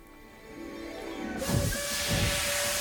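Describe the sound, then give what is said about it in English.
A train filmed in Jordan lets out a loud, sudden burst of steam hiss after a low, steady hum, with deep rumbling pulses underneath as the hissing continues to the end. “this train is actually the train that they used in Lawrence of Arabia”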